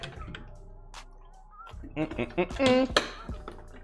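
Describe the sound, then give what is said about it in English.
Someone takes a swig of water: light clinks and knocks of a bottle or cup, a few wet gulping sounds, then a short voiced sigh and a sharp click. “Let me get a swig of this water, though, and then we're going to talk about the next thing.”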